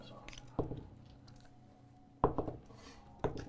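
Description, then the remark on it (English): Several dice clatter and tumble across a hard surface in three sharp bursts, each a quick rattle of small clicks that settles fast, with faint background murmur between. “Many dice are rolled.”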